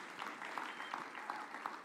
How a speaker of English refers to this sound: So that is awesome. Give yourselves a huge, huge round of applause.